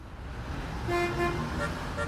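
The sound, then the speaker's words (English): Car horns honk over a steady rumble of road traffic, a longer blare followed by a few shorter toots, moderately loud, with no talking. “We're stuck in traffic anyway.”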